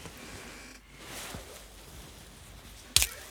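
A quiet stretch of soft rustling gives way to one sharp, crisp snap near the end as a banana is snapped open to be peeled, with no one speaking.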